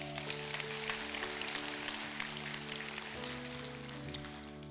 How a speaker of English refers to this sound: And so can we just give our pastors a round of applause?